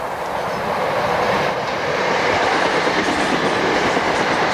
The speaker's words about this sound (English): Did you hear the train comes fast? Why can it not stop? It is a stupid machine.